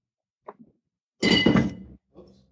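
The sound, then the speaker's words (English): Keys are dragged out from under a microphone: a couple of soft taps, then a loud scrape and metallic jangle lasting under a second, followed by a fainter rustle. “My keys are unfortunately underneath the microphone.”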